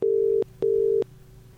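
A telephone line tone sounds as a call is dialed from the Forever Manchester studio, a steady electronic hum in two quick back-to-back bursts, the familiar double purr of a call ringing out, clear with no voices.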